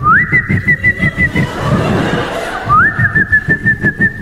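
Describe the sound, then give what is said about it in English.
A person whistles in imitation of a pet bird: two rising, then steady high notes separated by a pause, with rhythmic low puffing or chuckling sounds pulsing underneath. “she would drive so she could take her bird along, and that bird is just an outstanding member of society. What does it do? It goes...”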